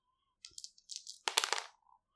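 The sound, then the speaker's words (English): Three dice, rolled for a charisma check with advantage, rattle and tumble across a hard surface, a quick burst of clicking clatter that builds to a busy rattle before settling, fairly quiet, with no voices. “Give me a charismatic roll. I would love to. And I get an addition to that. Yes, advantage so to this. Three dice, five or six.”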